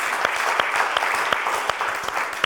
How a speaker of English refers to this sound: Yeah, give me a round of applause.